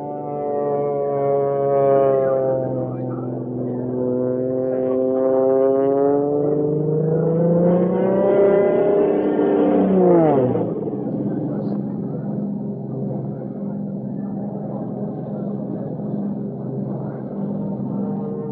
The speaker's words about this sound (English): he'll do his best to stunt that plane all the way up to 10,000